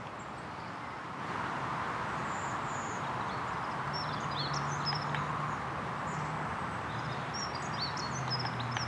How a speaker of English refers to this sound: A woodpecker or nuthatch.